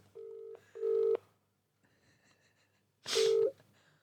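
A phone ringing tone plays through the speakerphone of an Android phone during an outgoing call, a pair of short electronic rings followed by a pause and another ring, moderately loud with no one talking.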